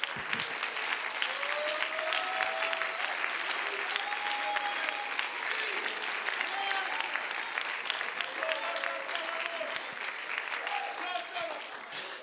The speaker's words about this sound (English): Clap your hands and shout, give us extra, Lord.